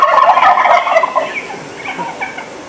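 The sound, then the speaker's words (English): Wild turkey gobblers, still roosted in trees, gobble in loud, rapid rattling bursts at calling hens, crows and other sounds, overlapping at first, then trailing off into fainter gobbles, with no talking. “The hens are calling, and the gobblers are pretty much gobbling at anything.”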